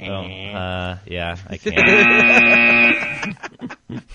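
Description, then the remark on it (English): A single flat, harsh buzzer tone holds steady for about a second in the middle, with people talking in bleating, drawn-out voices before it and chattering after. “Hey, can you give yourself that little buzz?”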